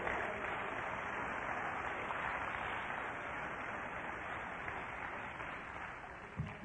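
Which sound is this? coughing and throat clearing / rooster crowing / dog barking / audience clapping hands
audience clapping hands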